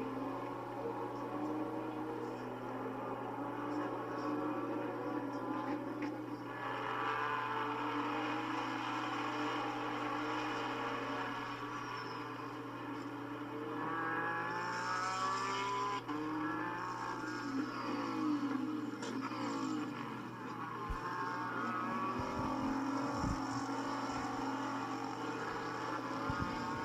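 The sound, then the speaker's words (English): Race car engines drone steadily, with a few cars swelling and sweeping in pitch as they pass by around the track at Buttonwillow Raceway Park at the end of the racing day, the first race of the season. No one speaks. “What a fantastic, picturesque way to end the racing day here at Buttonwillow Raceway Park for our first race of the season.”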